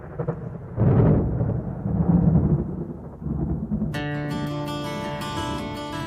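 Deep, rolling thunder rumbles in two heavy swells, then fades as a sustained musical intro with ringing tones comes in and carries on at a steady level.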